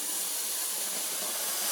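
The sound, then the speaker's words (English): A steady, continuous hiss of air rushing out of a nozzle as a large balloon is filled fully, loud, holding constant for a couple of seconds with no talking. “But if you're to take a balloon and fill it fully, I mean really, really fill it.”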